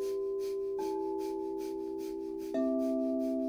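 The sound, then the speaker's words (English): Rapid, rhythmic breath-of-fire breathing in and out through the nose, pumping the navel, done with knees pulled into the chest as a yoga exercise; quick sharp exhales pulse about four or five times per second over a steady, sustained musical drone, with no talking. “If you've never done breath of fire before, it's a rhythmic breathing in and out through the nose, pumping the navel.”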